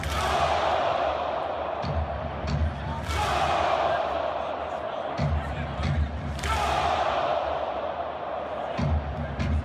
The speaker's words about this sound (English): And so if you watch a Minnesota Vikings game, you will see all the fans do this. They do this weird, like, don't clap, score. So I'm just going to play an example.